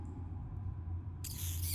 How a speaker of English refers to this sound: it chitters and chitters. It almost seems like it is giving commands or talking. After a moment or two, the rat stops chittering, and then all the other rats chitter in almost a strange applause.